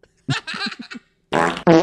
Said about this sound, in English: We got sound effects now. Yeah. This is perfect fart. Dry fart. Anxious fart.